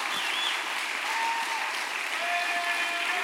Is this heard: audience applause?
yes